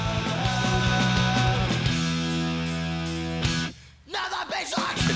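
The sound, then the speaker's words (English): A harsh, distorted hardcore scream roars into the microphone over dense, heavy music, holding for several seconds before cutting out briefly, then returning in rough, ragged bursts. “I want this hardcore mic scream.”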